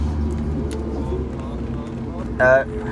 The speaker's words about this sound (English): It didn't even go that fast for it to be that cold either. What's up? We're in the back of the truck.